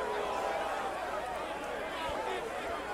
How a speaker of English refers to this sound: I gotta get in Talladega, man. They acting different. Listen to the crowd. The crowd even telling you.